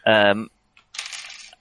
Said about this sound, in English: What happens next is determined by the throw of some dice.